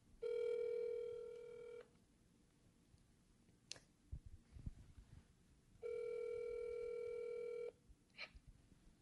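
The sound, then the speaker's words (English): A phone call placed by 9 News rings through: two long, steady, buzzy ring tones separated by a pause, with faint clicks and rustling handling noise in between and no one speaking. “Oh, no, just go ahead and call.”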